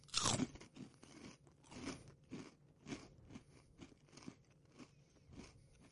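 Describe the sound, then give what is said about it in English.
Loud crunching of crispy salt and vinegar vegan pork rinds: one sharp initial bite followed by a steady rhythm of crackly chewing crunches, about two per second, with no talking. “The crunch is cool.”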